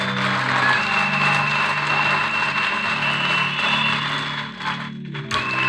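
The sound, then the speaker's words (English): An audience claps for Jesus steadily and continuously for several seconds, a dense, even wash of hands with a low sustained musical drone underneath, dipping briefly near the end before resuming. “Come on, clap for Jesus.”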